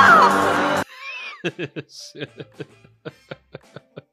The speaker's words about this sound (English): And it's a hot sauce called Mad Dog 357 Plutonium No. 9. Ooh. And it comes in at 9 million Scoville units. Gonna have you screaming like this.